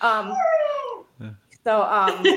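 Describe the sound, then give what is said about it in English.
A dog lets out a long, excited howl that slides downward, then a short whimper and another rising howl-whine, fairly loud, with no talking over it. “Sorry, my dog is very excited now.”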